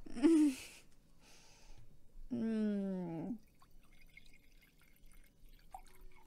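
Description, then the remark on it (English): A voice imitates liquid pouring into a wine glass with two short gurgling bursts, the second longer with a rising glug, followed by quiet room noise. “Wine pour.”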